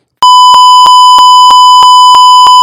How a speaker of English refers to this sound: I'm literally going to do a bleep.